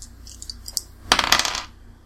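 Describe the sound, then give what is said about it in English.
A few light clicks, then a dense half-second rattle of dice tumbling and clattering across a hard surface before settling into quiet; no one speaks. The dice are rolled in a game to see whether a weapon blows up, needing 75 or below. “so you can roll. Roll 75 or below.”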